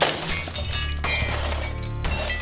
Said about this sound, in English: The bottle that he'd been holding dropped to the floor, leaving blood-red wine and broken glass everywhere.